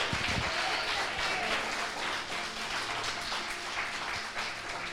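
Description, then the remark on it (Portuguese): A church audience applauds loudly for Jesus during a sermon, a dense, steady wash of many hands clapping that holds for several seconds without pause, with a faint murmur of voices underneath. “Quem crê assim, aplauda bem forte.”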